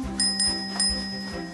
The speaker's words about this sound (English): "I hope I make it on time," he said jokingly, whilst ringing his own lucky bell.